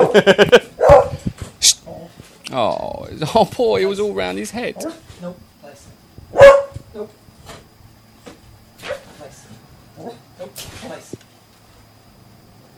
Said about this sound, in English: See, I told you a dog might bark, and that might be a good time for us to have...